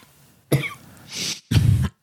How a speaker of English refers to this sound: Yes, the coughs continue, everybody. My body producing histamines saga continues.